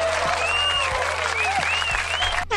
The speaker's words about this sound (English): And we are going to end it off with some smooth vibes from nothing. Just a round of applause.